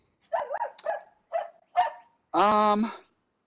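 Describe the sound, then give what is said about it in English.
Dogs bark in a quick string of short, yappy barks, ending with one longer, drawn-out whining bark, during an interview. The barking is fairly loud, with no one talking over it. “Hold on one second. The dogs are biting.”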